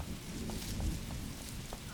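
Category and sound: nature, rain falling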